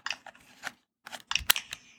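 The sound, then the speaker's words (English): Crisp plastic clicks and snaps from a Nintendo Switch Joy-Con controller sliding onto the console while the system is on, in two quick bursts separated by a brief pause, with no talking. “I didn't know that they added an extra clicking noise when the system is on.”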